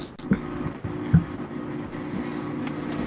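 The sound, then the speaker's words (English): An indoor air conditioner switching on: a steady, droning mechanical hum with a low tonal whine, broken early by a couple of brief low thumps, then running evenly with no talking. “Someone turned something on.”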